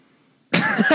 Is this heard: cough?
yes